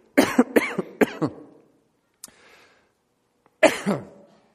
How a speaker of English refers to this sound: Coughing wasn't part of the picture.